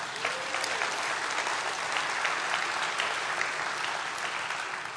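A church audience applauds steadily, a dense, even wash of many hands clapping for several seconds without pause, no voices standing out above it.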